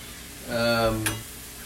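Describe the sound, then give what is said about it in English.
Food sizzles in a pan as dinner is cooked on a Sunday night, with a steady, soft crackling hiss throughout. Partway through, a low steady hum rises over it for about a second, ending with a brief sharp click. “So we're cooking dinner right now.”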